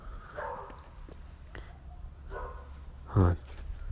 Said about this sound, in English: Dumb dog keeps barking.